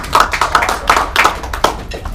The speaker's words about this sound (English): So, you know, big round, give yourselves a round of applause. That's awesome.